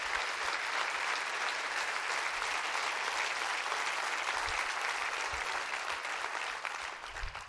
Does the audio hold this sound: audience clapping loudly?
yes